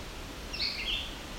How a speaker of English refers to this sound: Here we go. These are red-eyed vireo.